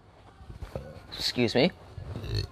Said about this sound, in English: I cannot stop fucking burping. Sorry.